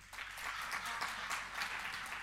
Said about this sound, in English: Yeah. That's kind of what I thought. More ladies were clapping on the first one.